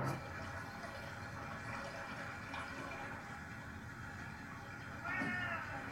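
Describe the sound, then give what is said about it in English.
A single short cat meow rises out of a steady, hissing background noise near the end, clear after several seconds of only the constant rushing sound. “Kitty Cat Pots. Meow.”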